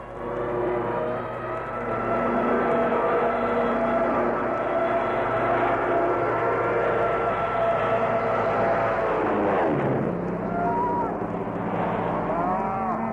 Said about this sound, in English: Darn if I can hear anything. I'm deafened by those planes.